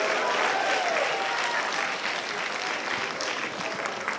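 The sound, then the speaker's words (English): An audience claps steadily in a dense, sustained round of applause that stays loud throughout, with a few faint cheers or whistles rising briefly near the start. “All right, applaud them one more time.”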